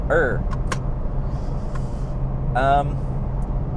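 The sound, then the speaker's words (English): A steady low engine rumble inside a car, with a few sharp, scattered clicks and rattles like something loose jiggling nearby. Brief bits of voice come through as well. “What is jiggling? Oh, I hate these noises of jiggling noises. Oh, it could be maybe a seatbelt or something.”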